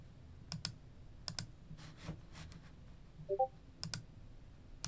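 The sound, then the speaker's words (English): Sharp computer mouse and keyboard clicks come in small pairs and clusters, fairly crisp over a quiet hum, with a brief soft rustle in between and no talking. “Oh, doing some clicking.”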